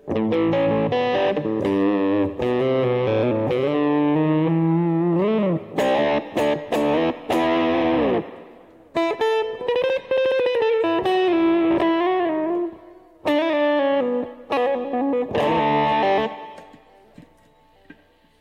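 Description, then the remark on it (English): A distorted electric guitar, played on its bridge pickup, plays a loud, bright riff with sustained bends and choppy chord stabs, ringing out alone before fading into a brief pause near the end. “So many different setups of pickups, of tremolos, non-tremolo, tone knobs, which apparently don't even work. Oh, because I'm on the bridge. There we go.”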